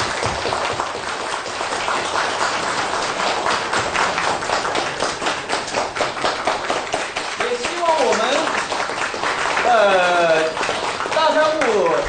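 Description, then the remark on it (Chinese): A crowd applauds steadily to thank a Khenpo for his lecture, dense overlapping clapping for the whole stretch, with a voice talking over the applause in the final few seconds. “最后，让我们以热烈的掌声对堪布的精彩演讲表示衷心的感谢。”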